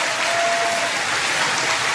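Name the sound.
audience cheering and applauding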